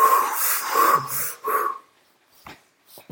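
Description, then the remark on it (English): A person takes a few loud, drawn-out, slightly wheezy deep breaths before starting a timed board game, followed by a quiet pause with a couple of faint clicks. “We're gonna count down from do some deep breathing.”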